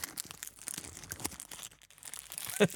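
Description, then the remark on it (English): Crackly crinkling of a chocolate wrapper, a busy run of sharp rustles and crunches lasting a few seconds, with one louder crackle near the end and no talking. “What is that? It's a chocolate wrapper.”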